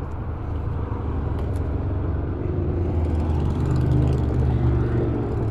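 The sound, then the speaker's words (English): Heavy, continuous engine rumble from traffic of motorcycles and cars such as new Mustangs and Avengers, with a low droning roar that swells slightly as a vehicle revs and passes, loud throughout with no talking. “These fucking noisemakers with their motorcycles and their new plastic Mustangs and Avengers and shit.”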